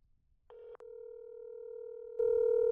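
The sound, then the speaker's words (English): A steady telephone dial tone hums as a call is placed to a doctor for a phone consult, after a brief quiet start; it cuts out for an instant, then resumes and swells louder near the end. No one speaks. “And so I'm gonna actually call one of them up.”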